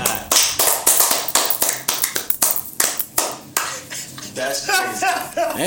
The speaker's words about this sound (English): Yeah, The Marvels, right. Fantastic movie. Let's give a round of applause for this movie.